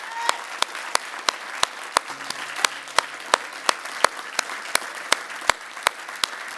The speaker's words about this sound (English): Now you can give the Lord a big hand clap. Isn't that great?